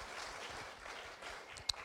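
A crowd applauds with steady, dense clapping that holds an even level throughout, with one sharper clap standing out near the end. No one speaks over it.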